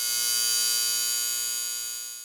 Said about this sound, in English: Hang on. I got to do a quick search for a sound effect of a buzzer going. Give me a minute. I'm going to insert that in right here.